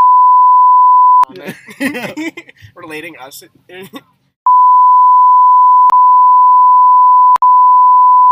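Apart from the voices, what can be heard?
censor bleep tone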